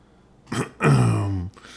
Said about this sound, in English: I'm warmed up. Just needed to clear your throat.